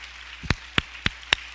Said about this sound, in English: And I think you ought to give them a hand. Amen. Every one of them. Amen. Come on. Come on. Clap your hand.